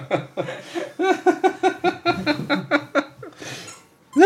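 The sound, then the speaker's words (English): Sammy the dog plays with a squeak toy that squeaks over and over in a quick, steady rhythm, about a dozen bright, pitched squeals in a row, loud and with no one talking. “Sammy's going to town on that thing.”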